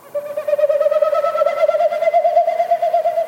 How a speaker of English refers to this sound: What male Wilson snipe do this time of the year in the spring, they do this flight. These winnowing flights is what they're called. So each time they flap their wings, it pushes air through the stiff outer tail feathers, and it makes that woo woo woo